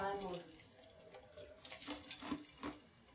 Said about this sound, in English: Getting water.